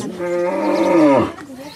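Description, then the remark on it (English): A single cow lets out a long, loud moo, a deep droning call that bends downward at the end before fading into quiet background noise. “Here are people who sleep with their cattle in one part of the house while charging their mobile phones on solar batteries in the other.”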